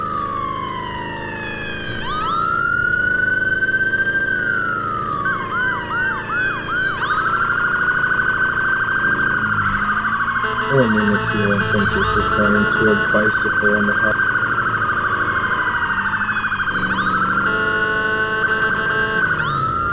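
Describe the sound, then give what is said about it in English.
A police car siren wails loudly while responding code 3, sweeping up and down in long cycles, then switching to a rapid yelping pattern before returning to the steady wail, with rumbling road noise beneath. “All units, respond code 3.”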